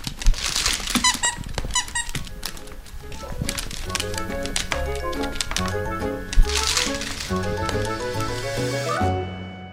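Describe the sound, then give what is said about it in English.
Rapid, irregular clicks of Tusk the dog's little claws tapping across a hard floor, fairly loud, with squeaky tonal sounds joining in partway through and continuing until the end. “Tusk does not bark, so he can't say hello that way, but here are the sounds of his little stalker claws on the floor.”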